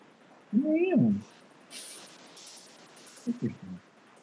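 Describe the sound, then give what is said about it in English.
A cat lets out a drawn-out, wavering meow, followed after a pause by a couple of shorter, clipped cat cries against faint background hiss. “Your cat needs smoke.”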